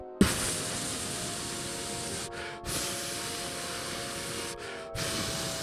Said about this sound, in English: That's the longest silent fart I've ever heard. Well, how can you hear it if it's silent?